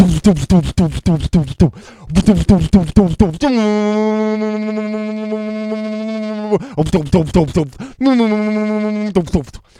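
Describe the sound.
A man's voice imitates his washing machine with a long, steady droning hum, then a shorter one, between bursts of speech-like vocalizing; fairly loud.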